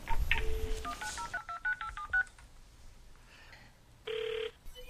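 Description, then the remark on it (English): A quick burst of telephone keypad tones, about eight short beeps in a rapid sequence, as a man's cell phone is dialed, followed by a steady ringback tone on the line. No one speaks. “One ringy dingy.”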